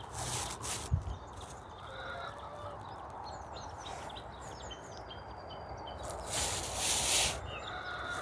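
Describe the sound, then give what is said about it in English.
Chickens in their new house cluck softly at dawn, scattered calls over a steady outdoor hiss, with a brief rustle of wind or movement near the end and no one speaking. “Let's go and see the chickens.”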